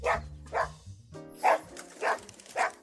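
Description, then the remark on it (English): A dog named Jennings, a character in the radio drama The Archers, barks five times in an uneven rhythm, sharp mid-pitched woofs separated by short pauses, with no other voices. “Jennings, I know it's in your blood to chase birds, but please don't do it.”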